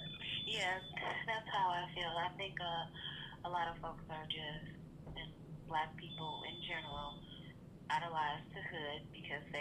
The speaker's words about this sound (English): Hey sis, what's beeping behind you?